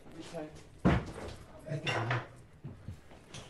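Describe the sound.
A single loud, sharp knock or bang on a door by police in Germany rings out, followed by fainter thumps, with muffled voices talking in the background.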